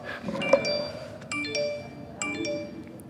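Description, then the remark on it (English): A mobile phone rings during a Bible reading with a bright electronic melody, short chiming notes in a quick repeating pattern, moderately loud over a low steady background hum. “And excuse me, my phone, I didn't turn it off.”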